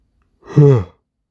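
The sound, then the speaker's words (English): A single short, breathy yawn with a voiced, drawn-out tone, fairly loud, surrounded by silence. “See, I yawn, I should knock out.”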